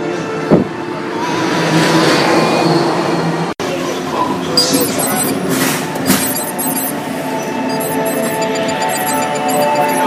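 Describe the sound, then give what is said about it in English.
A Test Track theme park ride car rumbles along steadily, with a constant mechanical hum, faint whirring tones and occasional metallic clinks, heard from the front seat inside the vehicle. “So we lucked out because we are the first ones on test track for the day, and we're in the front seat of the car.”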